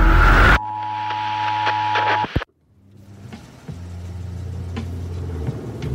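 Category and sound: vehicle, police car driving past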